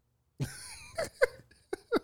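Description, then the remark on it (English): A person clears their throat in a rough, rasping series: a sharp initial burst, a sustained gravelly rumble, then several short guttural hacks, fairly loud, with no talking. “Why you clear your throat like a car starting?”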